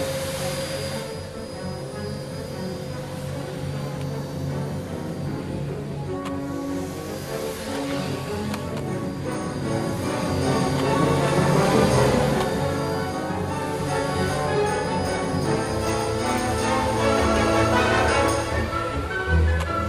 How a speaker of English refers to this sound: So there we have a little section of what is the music behind the Hoover Dance in Ballet Ireland's production Nutcracker Sweeties, which is touring the country at the moment and coming to the Gaiety Theatre in the next while.